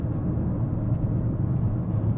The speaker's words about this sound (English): I'm going to be in the car doing this shit. You're going to hear the blinker. You're going to hear the wind. You're going to hear the roll. You're going to hear everything.